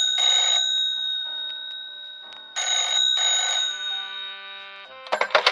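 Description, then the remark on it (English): A telephone bell rings in three bursts, a short ring, a pause, then a double ring, each trailing off with a metallic hum before a clatter at the end. “The phone rings.”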